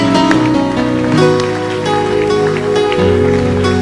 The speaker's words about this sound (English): Yes, clap your hands. As you are clapping your hands, thank God for the honor.